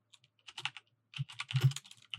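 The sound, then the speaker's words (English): Rapid clicking of keys on a computer keyboard, irregular bursts of typing with brief pauses between flurries, no voices present. “And I'm typing this out now so I can make sure I give it to you guys with the right spelling from Spectre Aviation.”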